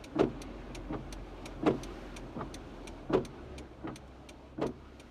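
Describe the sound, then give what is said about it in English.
Car windshield wipers sweep back and forth in a steady rhythm, each pass a soft rubbery swish, over a constant hiss of rain. No one speaks. “The next fingerprint is from my friend Sarah Wilkinson, who, as I mentioned, played the brass that you hear throughout the song, but she also sent the sound of rain and window wipers.”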